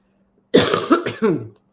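A fairly loud fit of coughing with three quick harsh bursts in a row, throaty and slightly rasping, alone against a quiet background with a faint low hum.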